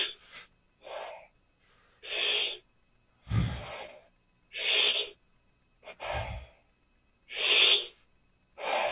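A series of rapid, forceful breaths close to the mic: sharp inhales alternating with hard, gusty exhales in a steady rhythm, roughly one per second, with no talking.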